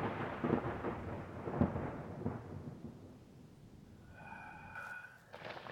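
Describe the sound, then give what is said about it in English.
Steady rain pours down with a low, rumbling wash that gradually thins out, followed near the end by a brief tonal chime, and no voices. “Can't see anything through the rain.”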